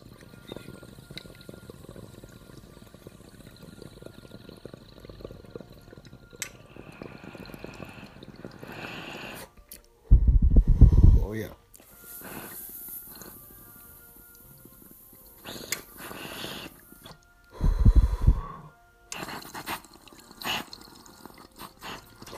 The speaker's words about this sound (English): Nice. That was like a perfect motherfucking dab. That's three nice pulls. No burn or scorch.